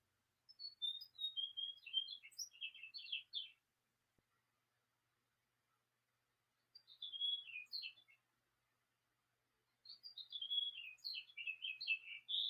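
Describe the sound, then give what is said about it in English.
A bird chirps and trills outside a window in three separate bursts of high, quick song with short silences between, sounding faint, with no voices. “Oh, listen to that bird out my window.”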